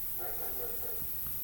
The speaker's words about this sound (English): Got some dogs barking out there. It might be my dog, Leia, if you haven't seen her.